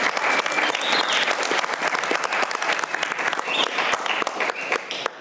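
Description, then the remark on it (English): An audience claps steadily for about five seconds, a dense, even patter of many hands at consistent loudness with no voices rising above it. The applause is for people committing to run the event again next year. “I think these guys deserve some applause for like committing to the fact that they're going to do it again.”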